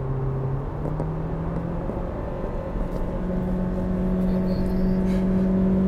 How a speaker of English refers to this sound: CVT. That's a good amount of droning.